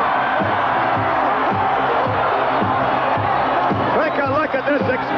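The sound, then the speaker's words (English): A capacity wrestling crowd, virtually everybody on their feet, roars and cheers steadily as Hulk Hogan makes his way into the ring for a World Wrestling Federation title defense against the Masked Superstar: a dense continuous wash of voices with whoops and shouts rising out of it, loud throughout without a break. “Capacity crowd, Hulk Hogan, ladies and gentlemen, making his way into the ring to lock up with the Masked Superstar.”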